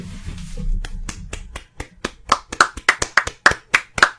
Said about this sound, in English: You weren't clapping loud enough at home. You have to clap more.